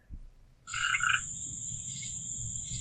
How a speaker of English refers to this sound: I hear frogs. Is somebody outside? I had to move outside. There's that just our audience. There's some tree frogs out here. I hear crickets.